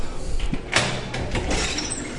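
A door opens with a short rattling scrape and a second brief clatter a moment later, set against steady room noise with no one speaking.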